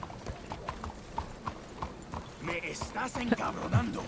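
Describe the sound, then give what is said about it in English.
Steady, rhythmic clip-clop of horse hooves galloping in a video game, moderately loud, with voices and other sounds rising over the hoofbeats in the second half. “but watch me run it into another horse.”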